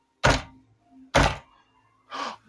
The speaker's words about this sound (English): So, spirits of the world that inhabit this kebab shop, I want to know, are you friendly or are you evil? Knock once for friendly, knock twice for evil.